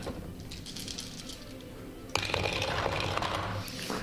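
Seven metal dice clatter loudly into a dice tray, a sudden burst of bright, rattling clicks that keeps jangling and settling for a couple of seconds after a quieter, scuffling lead-in.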